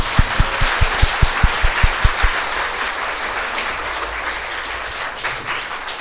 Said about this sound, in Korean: 박수로 해주세요.